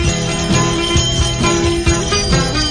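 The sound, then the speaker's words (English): A ship's bell rings repeatedly as the ship sails into a bay, within loud, busy music, its bright tones sounding over a steady rhythmic beat and thick instrumental backing. No one speaks. “Can you hear the ship's bell ringing as he sails into the bay?”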